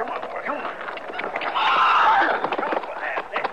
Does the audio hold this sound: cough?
no